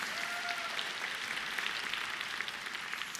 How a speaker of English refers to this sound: If you're new, they always clap here.